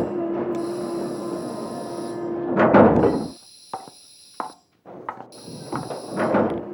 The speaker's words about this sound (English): Door's opening.